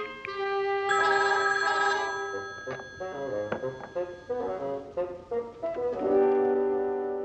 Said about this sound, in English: The Wayne phone will ring in a few seconds.